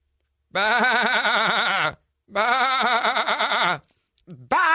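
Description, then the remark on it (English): A person's voice imitates a goat, giving two long, wavering, quavering bleats with a short pause between them and a third cry just beginning at the end. “Some of the goats were actually pretty good goats. Honestly, thought maybe there was real goats in there.”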